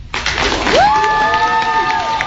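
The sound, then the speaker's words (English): An audience at a Free College event sponsored by the Hechinger Report claps steadily in a dense, continuous patter, while a sustained rising whistle or cheer rings out above the applause for over a second. “As you just witnessed another edition of Free College sponsored by the Hechinger Report, give everybody a applause.”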